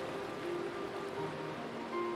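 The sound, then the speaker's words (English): A soft, continuous wash of ocean waves, steady, with faint sustained tones humming underneath and no one speaking. “And hear the symphony of nature, the waves, the breeze, the sound of your steps on the sand.”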